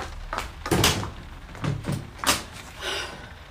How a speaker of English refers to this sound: Quick, lock the bedroom door.